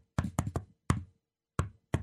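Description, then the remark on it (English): Sharp knocks on a door tap out the shave-and-a-haircut rhythm: five quick raps, a pause, then two final knocks, clear with no one speaking. “shave and a haircut, two bits, you know.”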